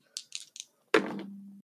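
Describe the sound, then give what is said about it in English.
Three quick, light clicks of dice rattling, followed by a sharper clatter as they land on a roll of 10 and a steady low rolling hum that fades after about half a second. No voices. “That is 10 on the dice plus 1 and 11.”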